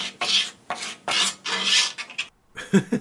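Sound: dog scratching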